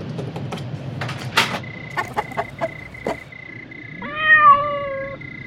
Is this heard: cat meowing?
yes